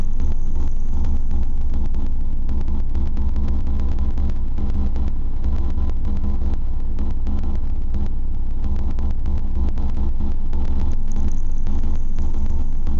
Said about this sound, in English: What you're listening to right now is a feedback patch of the VCF3DB, the Mimeophone, and the Monsoon's in there, and then it's all being mixed and going through the Desmodus for some reverb.